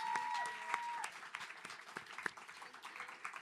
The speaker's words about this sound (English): So I really want you guys to give a round of applause to her, because this wouldn't have happened without her.